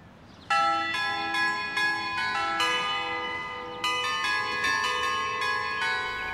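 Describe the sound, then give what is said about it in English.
A doorbell chime plays a melodic tune, the Four Seasons, in ringing bell notes one after another, each tone sustaining and overlapping the next. It is clear and fairly loud, with no talking. “That's an annoying doorbell.”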